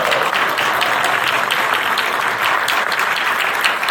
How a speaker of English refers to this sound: We are …, and this is live at GMEA. Let's give my hand clap for that.